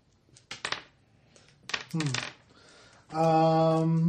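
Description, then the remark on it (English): Dice clatter across a tabletop in two short rattling bursts, followed by a person speaking or vocalizing in a drawn-out voice. “I did the wrong dice, actually.”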